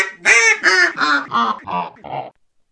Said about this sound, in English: Is that brand name duck call not all it's quacked up to be? Daggummit, boys. This brand name piece of crap don't call for shit.